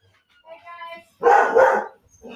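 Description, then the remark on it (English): A female dog barks loudly, two sharp barks in quick succession, after a brief softer whining sound, with the start of another bark cut off at the end. “And there's Wiggy barking her head off.”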